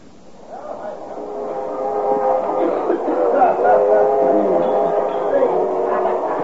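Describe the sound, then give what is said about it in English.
A moving train's steady rumble and droning hum in the train's club car, overlaid with the busy murmur of many indistinct voices, swelling up in the first few seconds and then holding loud and constant. “Of a noisy spot you got here, bud. Club car's always a popular place, sir.”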